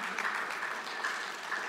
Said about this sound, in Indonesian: Frontliners, halo. Boleh kasih tepuk tangan buat Anda yang sudah melayani.